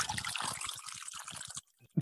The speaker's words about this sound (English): And I made a backup one. So I'll be, since I'm almost done with this one, pouring that in here.